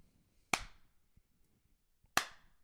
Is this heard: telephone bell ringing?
no